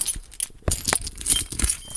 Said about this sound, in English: Oh, that's me dropping the keys.